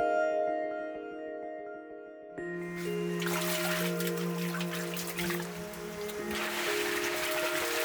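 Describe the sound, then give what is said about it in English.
Forest stream water flows steadily in the Chengbai Mountains, a full rushing wash that swells in after a couple of seconds of quiet, with sustained musical tones playing underneath throughout. “These rivers and streams hidden in the forests are like capillaries spreading out across the Chengbai Mountains, bringing nourishment to the forests and the people who've lived here for generations.”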